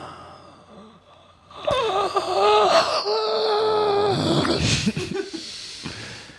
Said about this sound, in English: I crit succeeded on my gasp roll, so I really had to sell it.